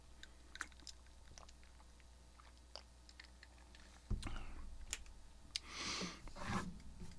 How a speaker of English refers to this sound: Let's get a sip of water.